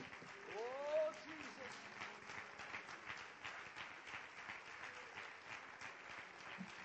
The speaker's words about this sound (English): And everyone clap their hands unto the Lord this morning.